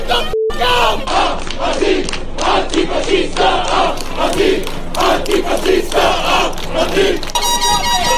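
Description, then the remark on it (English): A loud crowd of Antifa protesters chants, yells and curses in rough, repeated bursts, a dense roar of shouting that rises and falls continuously for several seconds. “I mean, just a lot of noise and chants and yelling, and you know, we could just play, and it's tough because you got to make sure that there's a lot of bleeping that we got to do because they're all cursing and screaming.”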